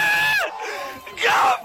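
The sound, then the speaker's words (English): A group of people scream and yell loudly in two sharp bursts, the first trailing off into a brief lull before a second shrill outburst. “Dude, as you scream really fucking loud.”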